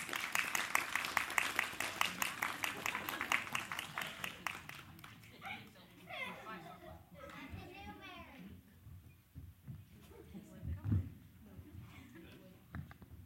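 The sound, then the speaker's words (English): A roomful of people bursts into lively applause for the actors after a Christmas play. Dense, rapid clapping lasts several seconds before it thins out and gives way to scattered voices and chatter. “And let's give our wonderful actors a big round of applause.”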